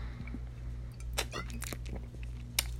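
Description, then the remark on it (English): Quiet mouth sounds of someone sipping a drink and swallowing: a cluster of wet slurps and gulps midway, then one sharper swallow near the end, over a low steady hum. “I'm going to get a sip here, okay?”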